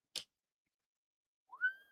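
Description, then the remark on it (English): A brief sharp tap, then after a pause someone whistles a single clear note that swoops upward and holds steady, with no talking. “Nah. Nope. No whistling.”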